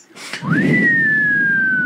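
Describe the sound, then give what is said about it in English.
A man at a race whistles loudly to fire up the crowd: a loud, piercing whistle swoops upward, then holds a long, slowly falling note for over a second, ringing above a low background rumble of crowd noise. “He's fucking whistling.”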